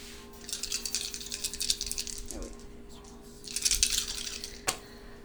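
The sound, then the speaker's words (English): Several dice are rolled for attack damage, rattling and clattering in two bursts, a shake then a tumble, ending with a sharp click as they settle; fairly quiet, with no voices. “Okay, so roll damage for the first attack. You're going to get one extra dice.”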